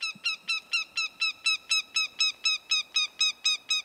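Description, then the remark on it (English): A northern goshawk, a bird of prey, gives a rapid, steady series of loud, harsh cackling calls, around fifteen evenly spaced notes repeated without pause, heard alone. “It's a northern goshawk, one of the most fearsome and admired of all birds of prey.”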